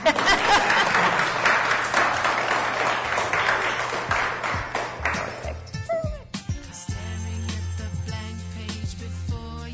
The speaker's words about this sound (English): Feel free to clap.